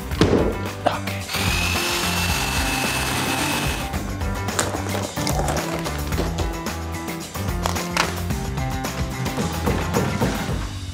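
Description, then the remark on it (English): A reciprocating saw (a Sawzall) runs loud, buzzing steadily as it chews through wood, with a harsh rasping whine that keeps going with brief stutters and bumps for the whole stretch. “She forgot the sawzall.”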